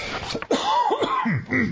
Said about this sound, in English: Yeah, your coughs are kind of loud in the microphone, so that one was not so loud.